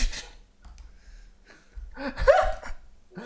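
A brief fart: a low, sputtering rumble that rises into a squeaky, reedy tone for about a second, preceded by faint rustling and a short breathy burst.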